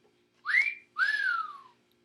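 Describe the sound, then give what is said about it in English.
Two clear whistled notes in quick succession: a short rising whistle, a brief pause, then a longer one that rises and slowly falls, fairly loud with no talking. “Which noise is it? Was that it? Yeah. The whistle.”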